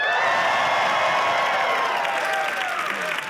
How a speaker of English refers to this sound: In Christ, you are unstoppable. Now everybody yell.